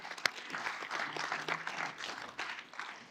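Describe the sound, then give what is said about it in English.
A crowd at a Celebrate Recovery gathering applauds steadily, many hands clapping in a dense, even wash of sound with a few sharper individual claps standing out, sustained for the whole few seconds. “Y'all clap that.”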